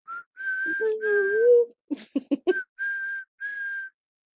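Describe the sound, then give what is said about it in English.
A whistle blows several steady, shrill blasts in a row, loud, broken up in the middle by a cluster of short punchy thumps and a low voiced tone. “Blow the whistle.”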